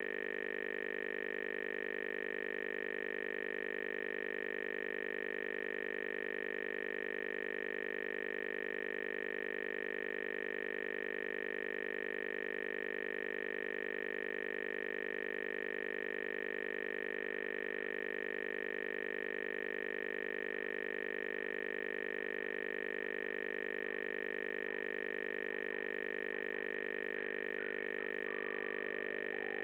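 A steady, unbroken telephone dial tone hums continuously for about thirty seconds, even and unchanging in pitch, with no voices or other sounds over it, as a caller tries to call back in.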